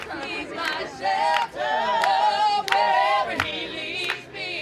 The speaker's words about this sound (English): It's a beautiful, sunny Saturday morning in Promised Land. There's a small crowd gathered under a tent. The annual hat parade is about to begin.